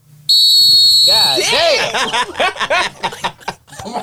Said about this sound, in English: I heard that. The last part of that whistle was aggressive. Almost took me out over here.